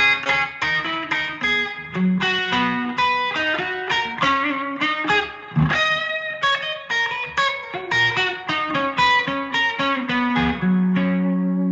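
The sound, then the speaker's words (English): A Gibson Birdland electric guitar plays alone in a jazzy style, a steady stream of quick picked notes and ringing chords with bright, bell-like overtones, holding a fairly even loudness throughout and no voices. “certainly the jazzy guitar players, which is why I play Gibson Birdland, not the … is why I play Gibson Birdland, but because you can also get beyond the bombast, you can get these beautiful bell type Gibson.”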